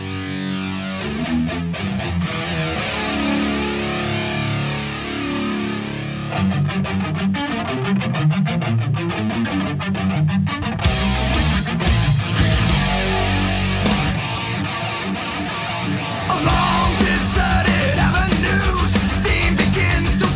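A loud, dense heavy metal cover song with distorted guitars and pounding drums, a strained, shrieking lead vocal riding on top, playing continuously and growing even fuller near the end.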